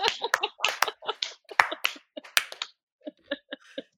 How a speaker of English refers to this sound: You know what? Let's just clap it up for her. For her.